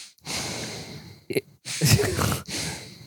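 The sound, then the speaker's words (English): A female dog breathes heavily and snorts, several loud, raspy bursts of air separated by short pauses, with a wet snuffling snort in the middle. “She makes me very self-conscious of my own breathing.”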